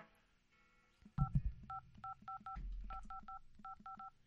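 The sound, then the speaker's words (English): A rapid string of about a dozen telephone keypad tones dialing a long-distance phone call, each a short two-pitch beep, dialed in quick uneven bursts over low handling noise and rumble, clear. “Let's make our phone call.”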